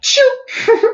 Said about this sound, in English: Bless you, baby.